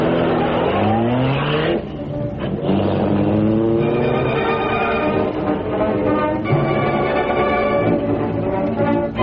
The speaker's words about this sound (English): Look at that car that went along the alley.